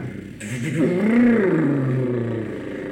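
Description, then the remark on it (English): A car engine turns over and catches after a loose fuse is fixed, then revs up with a rising, droning hum before settling into a steady idle, moderately loud. “There, I got my car.”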